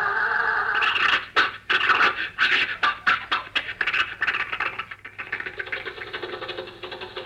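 An old car engine coughs and sputters in a series of uneven, rough bursts as Rochester tries to start it again, then catches and settles into a steadier, rattling run. No one speaks over it.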